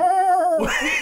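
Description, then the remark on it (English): A voice lets out a loud, wavering bleat like a screaming goat, a quavering held cry that breaks into a harsh, raspy shriek at the end, with no talking. “It's all a bleat. Right. It's just one of those screaming goats.”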